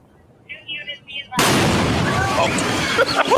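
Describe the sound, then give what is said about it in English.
A few short warning tones, then a sudden massive explosion as Los Angeles police detonate an illegal fireworks cache of 1,000 pounds of explosives, erupting into a loud, sustained roar of blast and rumble, with voices faintly heard beneath the noise. “17 people have been injured as Los Angeles police detonated an illegal fireworks cache. 1,000 pounds of explosives.”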